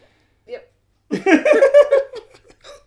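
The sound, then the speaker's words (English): A quick hiccup pops out, followed by a longer burst of voiced, laughter-like vocal sound and then a softer hiccup near the end. “got the hiccups.”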